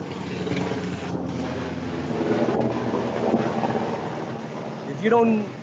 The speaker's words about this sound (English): Is that a helicopter? It sounds like a DMZ here.